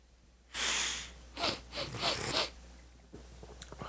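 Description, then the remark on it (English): Nasal sniffing while smelling a beer: one long, breathy inhale followed by a quick series of shorter, rhythmic sniffs, then a faint rustle. No talking. “Everyone wants to hear us sniffling.”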